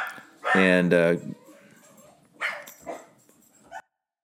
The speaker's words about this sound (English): Sorry about that. I had to go chase my dogs out of here for a little bit. I'm in my office and I had to chase my dogs. They're barking too much.